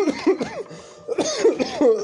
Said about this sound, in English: Well, I'm choking on my own spit, but ugh.